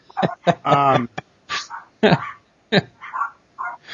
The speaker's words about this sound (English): I'm hearing my daughter's little yappy dogs. I'd like to drop kick because they're driving me nuts.